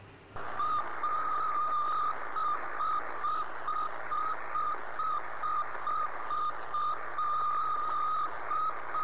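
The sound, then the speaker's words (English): Radio signal of the Sputnik satellite, an 83-kilogram satellite roughly the size of a basketball: a steady train of short, mid-pitched electronic beeps repeating evenly over a constant wash of static hiss and a low hum, with no voices. “It was the Sputnik actually was just 83 kilo ka, roughly the size of a basketball, and it just did beeping noises.”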